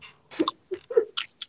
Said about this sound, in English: Yeah, now you sound like War Machine when you chew it on the microphone. I know.